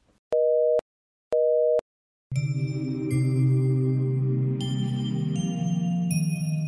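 Two short, steady phone busy-signal beeps pulse with brief silences between them after a call hangs up, then music starts and carries on to the end.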